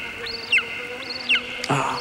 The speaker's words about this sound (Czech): To není orel, to je káněn. Není to bažant? To bude spíše káně.